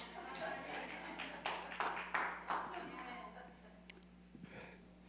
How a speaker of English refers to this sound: Thank you for that golf clap.